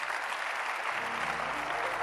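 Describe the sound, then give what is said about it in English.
An audience claps hands, a dense, steady wash of many hands clapping at once with no gaps, while a voice murmurs faintly underneath partway through. “Can I hear somebody clap your hands?”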